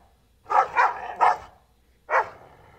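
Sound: two dogs barking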